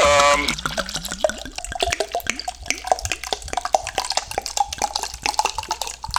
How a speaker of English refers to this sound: Well, hey, will you give me a second? I'm gonna pour myself a hot toddy here.